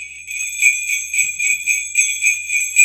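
Jingle bells shaken in a steady rhythm, about three bright, shimmering pulses each second. The high metallic ringing carries fairly loud throughout, with no voices.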